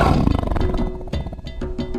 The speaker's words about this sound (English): But what does a lion do if it's happy? They chuff. Chuff? A chuff is a low-intensity sound that big cats emit in short, loud bursts. Air is blown through the nostrils while the mouth is closed, producing a kind of a growl snort.